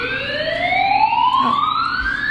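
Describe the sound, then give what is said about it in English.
A loud alarm siren wails, its tone sweeping steadily upward in pitch over a couple of seconds, rich in harmonics, with no one talking over it. “Alarms. Danger!”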